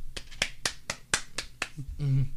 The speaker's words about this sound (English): Applause.